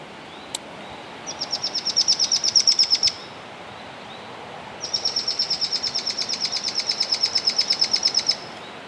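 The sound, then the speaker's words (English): Two bursts of rapid, rhythmic chattering calls of mohua, played through a small speaker from recordings made nearby, each a fast series of high, buzzy notes, separated by a short pause, clear and fairly loud over a soft outdoor background hiss. “Yeah, so we're going to try to play some chattery calls from Mohua recorded nearby.”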